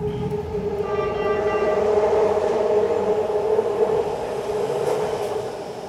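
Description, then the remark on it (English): A BART (Bay Area Rapid Transit) subway train rumbles and screeches steadily through the underground Powell Street station, its loud, sustained metallic whine and droning hum echoing for several seconds with no talking. “I wandered down here to the Powell Street subway station operated by BART, Bay Area Rapid Transit”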